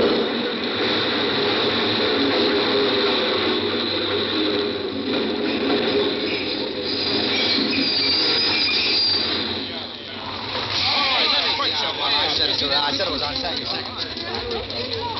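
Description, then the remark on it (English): A subway train rumbles in loudly out of a tunnel, its wheels squealing and grinding against the rails in a continuous metallic screech, with indistinct voices of a 5 o'clock crowd mixed into the din. “I made myself draw back, but what I really wanted to do was to throw myself in front of that train.”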